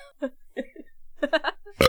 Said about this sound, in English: …'s been belching. I'm just gonna let it go.